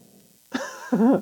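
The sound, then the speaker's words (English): A man, out cold, snores loudly: after a moment of near-quiet, two rough, rasping snorts follow in quick succession, the second longer and stronger, with no talking. “That does not sound like hell he's snoring. Like, loud.”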